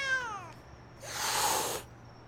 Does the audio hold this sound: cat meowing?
yes